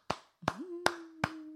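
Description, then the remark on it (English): A person claps their hands five times at a slow, even pace, each clap sharp and crisp, while a steady low hum sounds underneath from the second clap onward. “That's applauding funny.”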